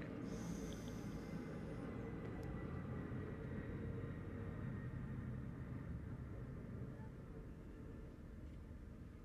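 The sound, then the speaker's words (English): A deep, continuous roar of airplanes passing overhead, heard from inside a home, steady and fairly loud throughout before easing off slightly near the end, with no one talking. “Hold on, we gotta wait for the airplanes to pass, because I'm at home.”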